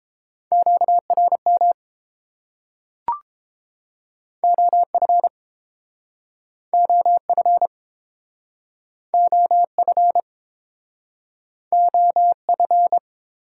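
A single steady beeping tone keyed on and off in Morse code at 22 words per minute, sent in five short bursts separated by pauses, with one brief click early on and no voices.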